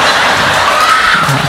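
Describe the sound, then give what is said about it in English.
A crowd claps steadily during a live turkey-themed rhyming performance, producing a dense, even wash of applause with no clear individual claps standing out. The sound stays loud and constant throughout, with no one speaking. “That clapping's messing my head up, man.”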